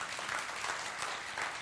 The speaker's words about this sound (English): Yeah, you can clap. Thank you.